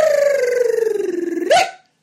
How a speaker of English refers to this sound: Oh, I guess me barking just inspired my dog to start barking.